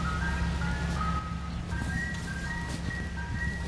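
An ice cream truck's tinny chime melody plays steadily over a low idling engine rumble, continuous, with no one speaking; two ice cream trucks are across from each other.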